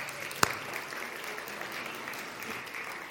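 A crowd claps steadily in a dense, even patter of many hands, with one sharper clap standing out early on; no one speaks over it.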